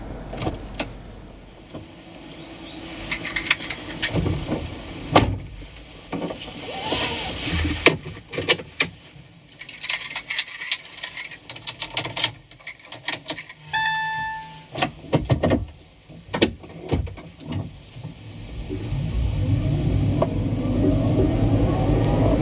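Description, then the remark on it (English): Sharp clunks and rustles of people climbing into a small car, a Mimsy resembling a Beetle with elements of the Fiat 500, a short electronic chime, then the engine starting and steadily revving up near the end as it pulls away. “Okay, we're in the Mimsy. It's actually a very nice little car.”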